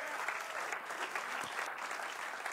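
A crowd applauds steadily, a dense wash of many hands clapping at an even, fairly loud level throughout with no voices standing out.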